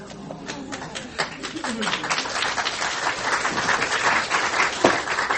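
An audience applauds steadily after a story is read aloud, a dense wash of many hands clapping that builds slightly and holds at moderate loudness, with a few sharper individual claps standing out.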